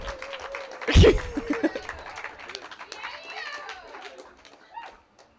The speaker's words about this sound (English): Our next storyteller, I want you to give him a round of applause all the way up to the microphone